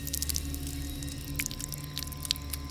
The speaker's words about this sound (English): He was following the scent when he heard a strange, dripping sound.